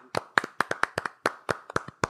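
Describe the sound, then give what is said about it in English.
A quick run of about a dozen hand claps in a fairly steady rhythm, each one a sharp, crisp smack, with no voices over them. “So that's a clap.”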